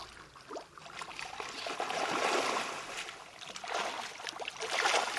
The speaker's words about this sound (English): Except for the whoosh of the orca blowholes, Echo Bay is pretty quiet, and you can hear a boat coming from a long way.